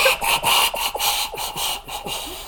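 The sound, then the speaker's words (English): A voice imitates the character Conrad Kurz trying and failing to whistle: a rapid run of about ten breathy, hissing rasps in a steady back-and-forth rhythm, airy and toneless, with no talking. “Conrad Kurz is trying to whistle, but it sounds like...”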